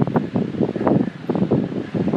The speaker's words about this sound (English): I'm walking alongside the Atlantic Ocean. I'm walking on the promenade in Lahinch. There are people in the water. Some of them are surfers.